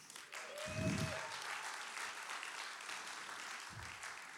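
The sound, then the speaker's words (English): An audience claps steadily as a round of applause for Deborah, the only female judge in Israel, a dense crackle of many hands sustained throughout, with a couple of low thumps and a faint whistle-like tone riding over the applause. “I'd like you to give a round of applause for the only one who is female as a judge in Israel.”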